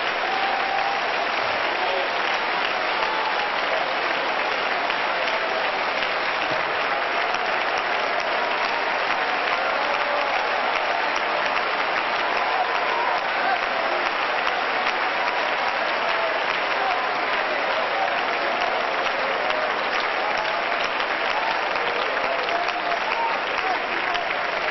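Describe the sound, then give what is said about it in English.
A large audience claps in praise to God, continuously, in a dense, sustained wash of applause that stays loud and steady throughout, with no distinct individual claps standing out and no speech heard. “But would you put a tail on that and clap one more time?”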